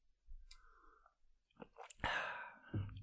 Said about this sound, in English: hold on, let me take a sip because. Let's both take a sip.